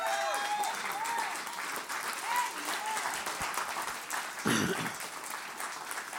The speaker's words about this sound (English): Stand to your feet and give the Lord a hand clap.